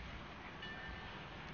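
A steady, broad rumble of a train headed north, with a refrigerated boxcar, rolling past outside the window: continuous low-pitched clatter with a faint high whine riding over it, no voices.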